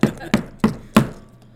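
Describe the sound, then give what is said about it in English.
Dice rattle in a dice cup for a shake-of-the-day dice game, with four sharp, evenly spaced clacks about a third of a second apart, fairly loud, then fading to quiet. No one speaks. “Do you want to do shake of the day before we do drunk, high, or stupid?”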